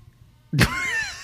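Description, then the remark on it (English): A car screeches outside: a sudden loud burst followed by a sustained, high-pitched squeal that wavers slightly and keeps going, with no voices. “I don't know if you'll be able to hear the perfectly timed car screaming outside.”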